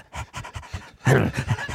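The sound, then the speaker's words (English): A dog pants in quick, rhythmic breathy bursts, several short huffs in a row, then a louder, heavier stretch of panting. No one speaks. “There we go. Good boy. Good boy.”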